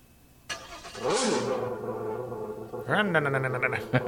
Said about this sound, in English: What kind of car? Indy car? Yes, that's right. That's the ones I found.